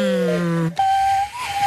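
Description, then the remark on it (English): A hollow, hooting cupped-hand whistle holds a low breathy note, breaks off briefly, then returns as a steadier, higher pitched tone with a slight wobble. It is fairly loud, with no talking. “I just cupped my hands and”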